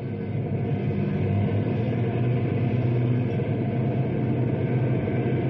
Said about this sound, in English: Hey, here come two prison trucks right now.